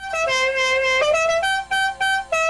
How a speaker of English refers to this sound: No, we don't have that anymore because we have a royalty-free, copyright-free horn sound.